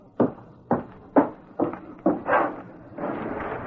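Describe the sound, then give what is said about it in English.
A series of about six soft, hollow raps on an office window after dark, unevenly spaced, followed by a low rustling shuffle at the end; no one speaks. “He gave the impression of waiting for something, and when a soft rapping was heard at the window, he jumped nervously to his feet.”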